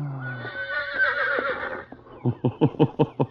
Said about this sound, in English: For why you look at Pancho, Senor Horse?